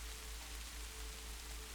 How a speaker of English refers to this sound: The pace of the rain is changing now. The droplets, larger and heavier.